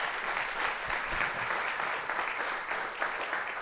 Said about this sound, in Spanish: Dele un aplauso fuerte al Señor.